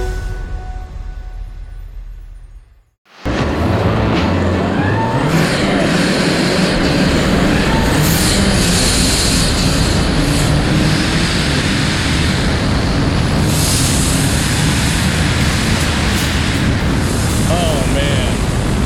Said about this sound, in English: There we go. Those are car sounds from my guest, the Diesel King. He set a blistering time of 10 minutes, 25 seconds, and now holds the diesel record at Pikes Peak.